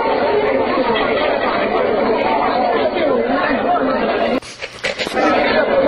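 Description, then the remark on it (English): A crowd of people perched on a wall at the Praetorium, watching something, chatters continuously in a steady, loud murmur of overlapping voices, with a brief burst of sharper, brighter noise near the end before the babble resumes. “I've stumbled upon a crowd of folks perched on a wall.”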